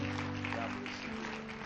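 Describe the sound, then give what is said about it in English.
A church audience claps continuously as people come forward to the front, in a dense, steady wash of hand claps, with sustained low musical tones humming underneath throughout. “Come on, just keep clapping now, church. Keep clapping now as they come.”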